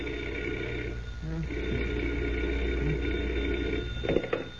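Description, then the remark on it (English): An old-style telephone bell rings at 5 o'clock in the morning, rousing Clark Kent from bed, in a steady, buzzing trill that pauses briefly and starts again, sitting over a low continuous hum, with no one speaking. “But that certainly didn't mean the end of adventures for Superman, because at 5 o'clock the following morning, Clark Kent was roused from bed by the sound of a telephone ringing.”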